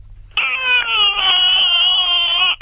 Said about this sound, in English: Sorry. Is that foxes outside? So it's in the middle of the night, you hear a baby crying in the street. That'll be foxes. That's so loud.